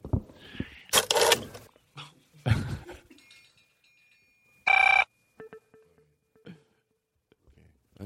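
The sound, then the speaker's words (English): A telephone rings once in a short, loud electronic burst, following a few sharp dog barks, with quieter clatter and a faint steady tone in the background. “Shut the music off. Eliza Skinner's on the phone.”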